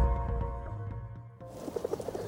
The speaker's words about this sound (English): Here you go. You pretty little birds, only take what you need. Save some croissant for the little ones.